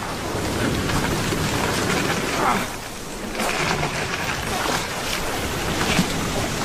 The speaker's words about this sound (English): I rowed on with renewed vigor.